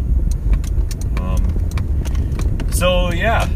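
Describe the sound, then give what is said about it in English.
Steady low road rumble inside a moving older Toyota car, with scattered clicks and rattles and a brief voice sound near the end. “If you guys have been following it all, you know I'm kind of in a new old car, new to me, but it's an older Toyota that I've recently transferred to, and trying to keep the noise down a bit.”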